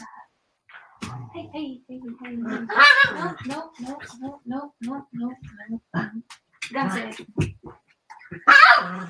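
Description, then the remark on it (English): Dogs bark in a rapid run of short, sharp barks and yips, with louder bursts near the start and at the very end. “Hey, dogs, we're doing a podcast here.”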